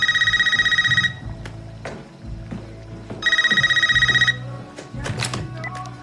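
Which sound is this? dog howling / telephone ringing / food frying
telephone ringing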